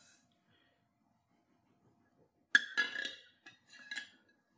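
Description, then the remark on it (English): A knife saws through a soft, gluten-free angel food cake in short back-and-forth strokes, giving a sudden scraping rasp followed by a few quieter, brief scrapes after a quiet start. “So you're going to cut it with a sawing motion. Just very small back and forth.”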